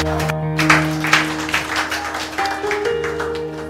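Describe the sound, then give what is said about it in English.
An audience claps for the Lord in a dense, steady burst of applause lasting several seconds, with sustained organ or keyboard chords holding underneath and no voices. “Somebody give the Lord a clap of it.”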